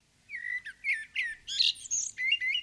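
A tailorbird calls in a quick, loud series of sharp, high chirps and whistled notes, repeating in bursts with no voices present.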